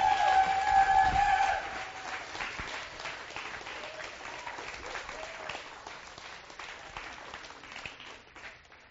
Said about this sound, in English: Let's just give him a round of applause.